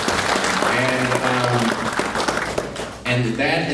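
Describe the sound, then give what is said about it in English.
A crowd breaks into steady applause for the contributors to an Indiegogo campaign, a dense wash of many hands clapping at once, loud and continuous, with a man's voice speaking over it. “So, round of applause to you guys.”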